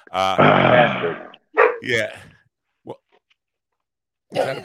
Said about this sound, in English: Somebody's dog.